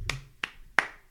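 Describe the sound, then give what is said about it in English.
Four slow, evenly spaced hand claps ring out one by one, sharp, with brief quiet gaps between them and no talking. “It would have been more of a slow clap, though.”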